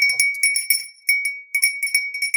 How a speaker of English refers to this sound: Listen to that. What is that? That sounds like ice in a glass of whiskey. Of whiskey.